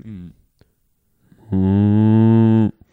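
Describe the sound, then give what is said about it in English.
A human voice imitates a cow, giving one long, loud, sustained moo after a brief vocal sound and a pause, with steady harmonic tone held for about a second. “Moo, moo, moo. It's like …, but moo.”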